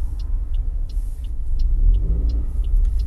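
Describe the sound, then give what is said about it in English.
A car drives along a road with a steady low engine rumble, while the turn indicator ticks at an even pace over it as the driver signals to move into another lane. “I'm just indicating into another lane.”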